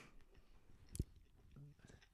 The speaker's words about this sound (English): He's munching on his pizza. He's still munching. Pizza in mouth. Don't want to sound like a slob.